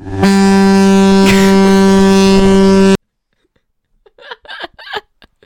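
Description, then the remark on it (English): A loud, steady foghorn blast holds a deep, buzzy tone for about three seconds before cutting off abruptly; after a short silence, someone begins talking. “I have a fog horn. Is that close enough? Play it and see what it sounds like.”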